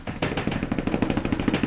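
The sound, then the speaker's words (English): A quick, improvised drum roll of rapid, evenly spaced taps on a hard surface, steady and moderately loud for under two seconds, with no talking. “Can we get a drum roll?”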